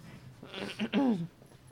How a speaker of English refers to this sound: What are you barking at, Papa? The dogs are coming home.